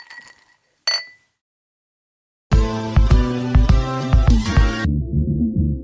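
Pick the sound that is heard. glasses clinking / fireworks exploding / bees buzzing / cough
glasses clinking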